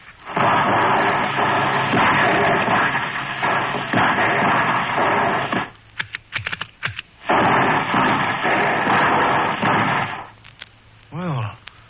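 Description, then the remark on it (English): Three quick rifle volleys are fired well above the height of a standing man, one toward a tree fallen into a clearing, one to the right and one to the left: sharp, cracking reports land in quick succession over a steady, hissing background of noise before the hiss returns. “Let's give them 3 quick volleys.”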